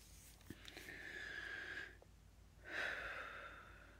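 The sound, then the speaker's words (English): Two long, deep breaths: a slow, airy inhale lasting about a second, a brief pause, then a full, rushing exhale, with no talking. “Glad I can breathe deep without hurting a lot.”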